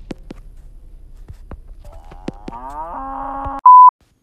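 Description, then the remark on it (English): A single loud cow moo swells up after a few soft clicks and thumps, holding a rising, drawn-out bellow, then cuts off into a brief electronic beep. “Watch out for that, that cow.”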